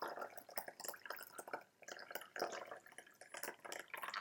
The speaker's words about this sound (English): So I'm going to go ahead and put 5 grams, more or less, into this teapot. Then I'm just going to pour in 60 degrees Celsius water.